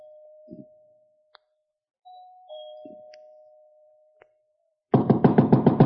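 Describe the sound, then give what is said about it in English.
A doorbell, pushed at the front door at night, rings inside a big, unlit house with two sustained, fading chime tones, a few soft thuds and clicks between them, then a sudden loud burst of rapid, rhythmic pulsing at the end. “I walked up the front stairs, punched at the doorbell, and heard it ring inside.”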